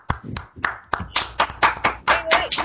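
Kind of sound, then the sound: crowd, round of applause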